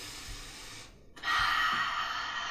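A deep breath drawn into the microphone: a soft inhale, a brief pause, then a louder, airy rush of breath that lingers before fading slightly. No one speaks.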